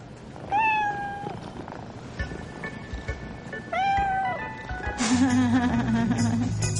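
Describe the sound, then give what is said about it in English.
Two drawn-out cat meows, each a rising then falling wail, followed by a lower, buzzier vocal sound over background noise. “They're not boots. They're my cats.”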